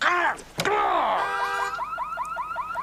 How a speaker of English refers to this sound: He kicks Jim's car, sets off the alarm.